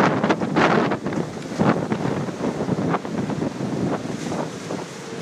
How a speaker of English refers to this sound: Is this too windy for you? It ain't too windy for me. Tell you what, it ain't too windy for me. I'm thinking that it's just right.